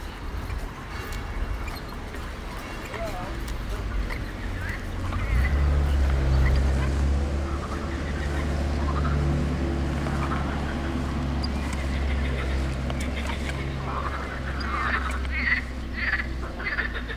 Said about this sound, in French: I was hoping we would hear that. Ce qu'on entend, ce sont les grenouilles de Sospel, the morning chorus of frogs chirping on the river Bévéra.